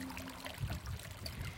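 Water trickles and laps steadily at a lake's edge, a soft continuous babble with small splashes, fairly quiet, with no voices present.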